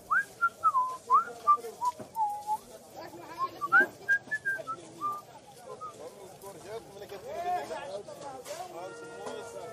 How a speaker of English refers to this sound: He smiled at the stall vendor, who was speechless, and walked on, whistling to himself.